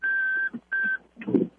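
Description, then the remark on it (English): Two steady, high-pitched electronic beeps from a car's reversing warning, the first longer than the second, followed by a brief burst of low, rumbling noise. “Are you backing up in a car right now?”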